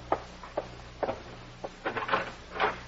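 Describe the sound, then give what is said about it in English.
A door being opened to answer a caller: a few sharp wooden clicks and knocks spaced apart, then a quick cluster of latch rattles and thumps, fairly quiet, with no voices. “But you had better answer the door.”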